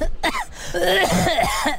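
human body sound, coughing

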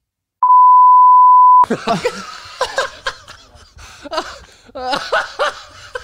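sound effect, censor bleep over speech

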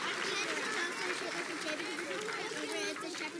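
crowd, audience round of applause

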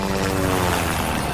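vehicle, helicopter flying away

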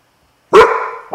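animal, dog barking

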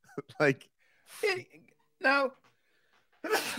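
human body sound, sneeze

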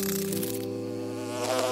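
insect, bee buzzing

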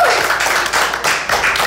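crowd, small round of applause

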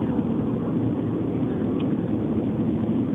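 vehicle, engine running

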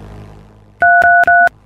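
signal or alarm, telephone keypad dialing tones

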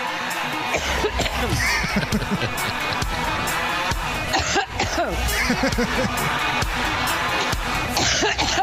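human body sound, coughing fit

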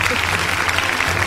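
sound effect, played applause sound effect

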